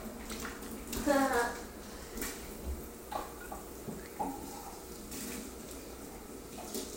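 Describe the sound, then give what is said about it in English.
Steady running water from a tap as dishes are washed, with a few light clinks of plates. A short bit of indistinct voice comes through near the start. “Doing the dishes.”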